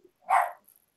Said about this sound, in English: Is that your dog in the background? My dog going crazy, man.